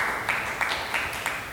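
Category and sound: crowd, audience clapping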